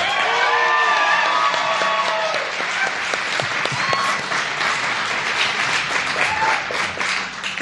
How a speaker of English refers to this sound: Ladies and gentlemen, please give a big round of applause for Maureen Johnson.